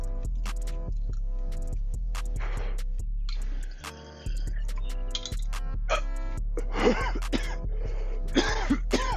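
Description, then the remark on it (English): Harsh coughing after a hit of Wildfire-strain cannabis comes in repeated bursts, mixed with throat clearing and a few sharp clicks, over a steady low hum with no talking. “Weak. Cough me.”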